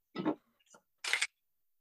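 A small bottle of setting spray is shaken in three quick bursts, each a brisk rattling swish separated by short pauses, with no voices.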